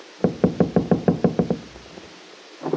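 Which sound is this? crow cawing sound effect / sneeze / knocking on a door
knocking on a door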